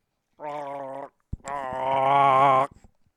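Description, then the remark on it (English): A person imitates a Chewbacca roar: a short gargly, growling howl, a brief pause with a click, then a longer, louder warbling roar that trails off into small throaty sounds. “call and leave Chewbacca noises for a chance to win $100.”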